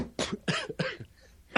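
A quick burst of three harsh, breathy coughs in a row, moderately loud, followed by a short pause and the start of a fourth cough.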